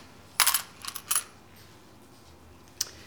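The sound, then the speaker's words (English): Coins are flung and clatter across a hard floor in a quick burst of bright metallic jingles, a few more bouncing and settling, then one last clink after a pause. “But Jesus was so angry that coins flew everywhere. Apologies to anybody who got hit.”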